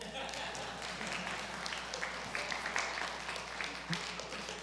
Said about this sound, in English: That's where you clap.